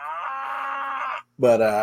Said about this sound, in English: Maybe the cows are distracting me.